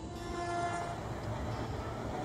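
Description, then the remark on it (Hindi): A train whistle gives a brief steady tone at the start over the continuous heavy rumble of a train pulling away, fairly loud throughout with no voices. “तभी ट्रेन की सीटी भी बज गई।”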